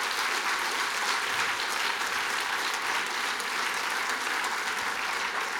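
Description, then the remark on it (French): Sustained audience applause at an evening storytelling event, for a storyteller who told a story about Egypt: a dense steady wash of many hands clapping at an even loudness for several seconds, with no speech over it. “Je crois que tu vas entendre des applaudissements.”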